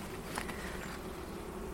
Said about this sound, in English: But yeah, there looks like a good amount of bees in there.